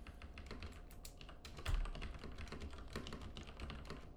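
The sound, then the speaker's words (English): Rapid, steady keystrokes clatter on a computer keyboard, continuous for a few seconds, with one slightly heavier thump partway through and no voices. “That keyboard.”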